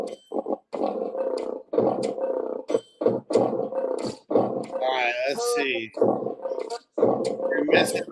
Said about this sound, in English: Ooh, a tiger.